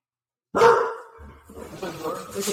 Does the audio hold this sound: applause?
no